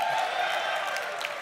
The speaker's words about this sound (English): Round of applause. We like it. Okay. Good. Round of applause.